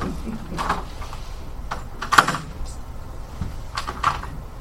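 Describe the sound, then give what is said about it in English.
A door is opened a little with a few scattered clicks and clunks of the latch and handle, one sharper knock in the middle, over a low background hum. “I'm going to have to open this door a little bit, all right?”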